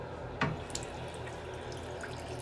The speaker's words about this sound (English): I'm going to drink some water, a little bit of water, from a 100-year-old sink. Just a little bit. A little gurgle from a 100-year-old sink.